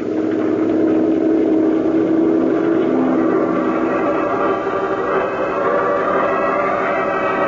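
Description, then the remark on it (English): A patrol boat's motor drones steadily and loudly throughout, a continuous engine rumble with a churning, noisy texture and no voices, holding even from start to finish. “Head for it, patrol boat three. We'll join you there.”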